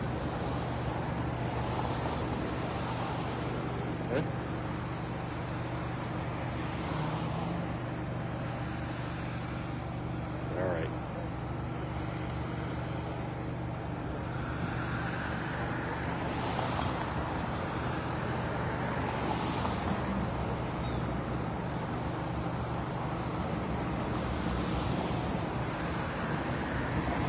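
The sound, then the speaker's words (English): Fast cars and motorcycles roar past one after another over a steady rumble of road traffic, each pass-by swelling loudly and then fading, with a low engine drone underneath throughout. “Very loud motorcycles. A very fast car. Look how fast these people are going.”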